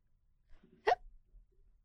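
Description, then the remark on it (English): A single sharp, fairly loud hiccup, preceded by a soft breathy vocal sound, then quiet. “It was a hiccup.”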